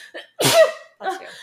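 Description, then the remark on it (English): A loud, explosive sneeze bursts out, followed a moment later by a second, softer sneeze, with small breathy sounds just before. No talking. “Your nose can't flush it out with one sneeze.”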